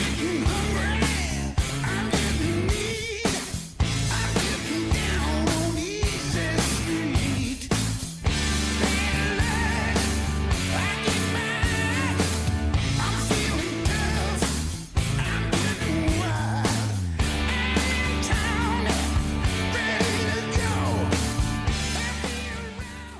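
A hard rock song plays loud and dense throughout, with a driving beat of steady drum hits under thick, sustained guitar chords and what sounds like shouted vocals.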